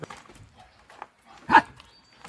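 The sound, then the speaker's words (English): Dogs bark: a few faint, scattered yelps, then one loud, sharp bark, followed by quieter rustling. No one speaks. “No, those are actual dogs.”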